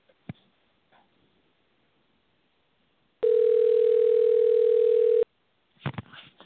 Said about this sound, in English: The phone is ringing. Let's see if we can grab him up.